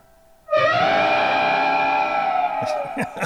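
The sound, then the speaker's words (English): A person imitates an elephant's trumpet with one loud, brassy blare that swoops up and holds steady for about two seconds, then trails off into a few short bursts of sound. “Oh, the elephant noise, perfectly.”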